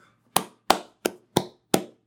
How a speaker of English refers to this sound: I'm clapping. I legitimately love that story.